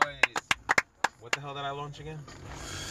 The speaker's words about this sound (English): Oh, round of applause for that, ladies and gentlemen. Round of applause for that. Make some noise.